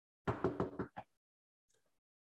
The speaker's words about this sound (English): Let's rewind it. I'll knock twice.